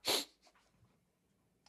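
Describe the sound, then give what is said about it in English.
A single loud, forced-sounding stage cough for a little improv scene bursts out at the start, harsh and breathy, then trails into a couple of faint puffs and near silence, with a brief noise at the very end. “Were you really coughing, or was that stage cough? It's a stage cough.”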